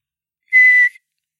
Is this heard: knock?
no